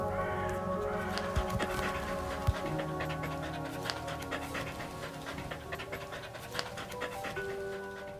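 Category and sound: animal, dog panting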